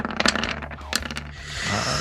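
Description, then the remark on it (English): Dice clatter and tumble across a hard surface in a quick burst of sharp clicks, then a short rattle before settling on a 6, fairly loud with no talking. “6 on the dice.”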